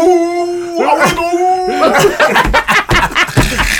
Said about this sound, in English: I told her, I said, no, he won't bite, she won't do nothing. Oh, but she'll bark nonstop for an hour. Bro, she was barking.